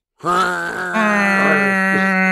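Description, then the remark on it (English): A man's voice imitates a truck horn with a sustained, buzzy, droning tone that holds steady for about two seconds, shifting pitch slightly partway through before settling into a loud, flat blare. “Let me try and make the truck noise.”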